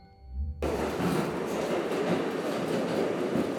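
A subway train rumbles steadily along the rails on a ride back downtown, a loud, continuous roar with faint rhythmic clatter, beginning abruptly after a brief low hum and sustaining throughout.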